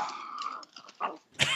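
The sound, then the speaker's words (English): Rough growling and snarling from dogs fighting, broken into short scrappy bursts and ending in a sharp, loud yelp-like outburst. “These things really do just kind of go at it on their own.”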